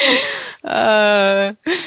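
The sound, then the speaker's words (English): A loud yawn: a breathy inhale that swells into a drawn-out, moaning voiced exhale lasting about a second, ending with a short breath afterward. “He's like, don't tell anyone that I'm yawning.”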